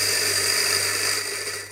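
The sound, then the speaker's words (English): A coffee machine makes a latte with lemon myrtle coffee, running with a loud, steady mechanical whir and hiss, continuous, easing off slightly at the end. No one speaks. “We serve the coffee at Warrikiri, and so, you know, putting the lemon myrtle coffee through the coffee machine to make a latte with it.”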